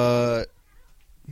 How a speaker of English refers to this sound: Anyway, we're getting distracted by a cat.